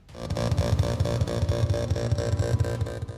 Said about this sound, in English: You all look up and see a drone hovering above, its metal wings buzzing loudly. It has a round body, two hands with whirling blades at the ends, and a bunch of long tubes on its back.